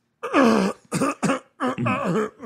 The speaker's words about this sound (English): Because let me tell you, you want me to cough in a movie? I could do a great one.